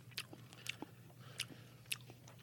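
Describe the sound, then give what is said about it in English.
Crunchy chewing of something being eaten, with four sharp, bright bites spaced about half a second apart over a low steady hum, no talking. “Well, what flavor was that you were eating?”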